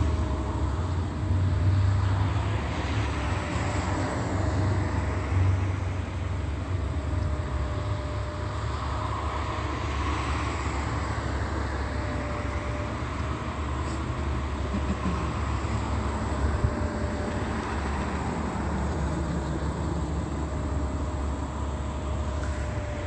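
A steady, heavy engine drone of airplanes overhead rumbles on without a break, loud and low with a faint tonal whine riding above it, and no voices.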